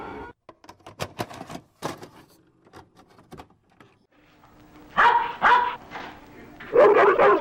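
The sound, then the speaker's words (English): Several loud barks from six Doberman Pinschers come in short bursts near the end, after a stretch of sharp clicking and tapping sounds. “Six Doberman Pinschers trained to commit the most incredible caper ever conceived.”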